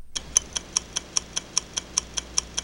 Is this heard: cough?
no